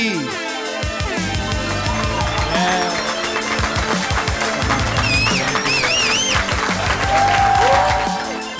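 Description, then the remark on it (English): An audience applauds loudly and steadily for several seconds, a dense wash of clapping with cheers and rising whistles breaking through midway, then fading slightly at the end. “I did not deserve a hand clap.”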